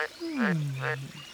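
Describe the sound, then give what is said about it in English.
Two raspy, nasal croaks from a green tree frog tucked into a tree hollow beside a cool creek, spaced about half a second apart, over a low, steady tone that slides slowly downward. “It's a green tree frog.”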